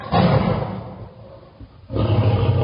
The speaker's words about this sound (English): She heard the angry cries of a tiger locked up inside his home.